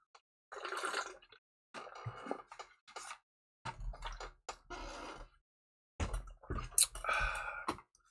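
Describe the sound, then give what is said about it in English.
Someone takes a quick drink of water: a few bursts of sipping and wet swallowing sounds with small mouth clicks, separated by short pauses, with no talking. “I've been talking a lot and not getting any water, so I'm just going to get to it. Take a quick drink right here.”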